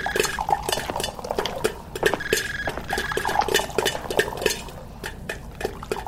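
Lemonade being poured into glasses for a family movie night at home, with a steady run of bright clinks and taps of glassware and ice throughout, fairly loud and busy, no voices.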